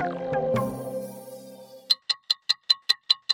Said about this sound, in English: Hear that? That's the clock counting down to the Brisbane 2032 Olympic and Paralympic Games, which, if you can believe it, are only 10 years away.